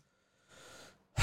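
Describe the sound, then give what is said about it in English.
A heavy, breathy exhale into the microphone, followed by a sharper, louder burst of breath at the very end. No speech. “You know, the breathing is a problem still.”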